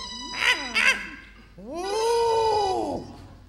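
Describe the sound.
A small monkey dressed in an outfit, perched on a man's shoulder, calls out: two quick, high squeals followed by one long, drawn-out wavering cry, loud and tonal.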